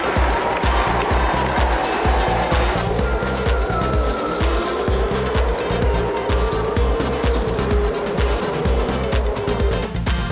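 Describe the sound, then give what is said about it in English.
New-generation Formula One race cars with V6 turbocharged engines roar loudly and continuously around the Albert Park circuit in Melbourne, their high whining pitch sliding up and down as they accelerate and brake, with no voices heard. “The new generation Formula One cars took to the Albert Park circuit last weekend.”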